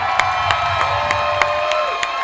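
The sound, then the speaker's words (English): A large live concert crowd at Epcot on a Friday night at 8 o'clock cheers and applauds a guitarist in a loud, sustained roar, with sharp claps standing out and a whistle-like tone rising above the noise. “Give it up for Rockin' Ronnie Shepherd on guitar”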